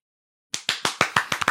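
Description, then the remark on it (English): After a short silence, a pair of hands claps about eight times in quick, steady succession, sharp, with no voices. “I think I need an applause sound effect.”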